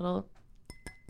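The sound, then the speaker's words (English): Champagne glasses clink together in a toast: three quick, bright taps, one leaving a thin ringing tone, after a brief burst of voice at the start. “A little tinkling noise to celebrate the arrival.”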